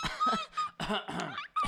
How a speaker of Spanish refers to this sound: Si quieres, tose mientras yo hago ruidos.